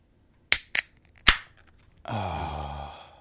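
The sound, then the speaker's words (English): A can of El Segundo Brewing Company On the Horizon IPA (7.2) cracks open: three sharp metallic clicks and snaps, then a steady fizzing hiss with a faint ringing tone that carries on for about a second. No one speaks. “And we will crack this.”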